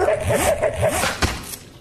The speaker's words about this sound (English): And then a pair of vicious guard dogs.